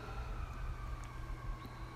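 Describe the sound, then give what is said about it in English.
An emergency vehicle siren wails steadily as it goes by, its high tone drifting slightly in pitch over a low rumble of traffic, with no one talking. “I feel like I've been honoring him this whole time over and over as the sirens go by.”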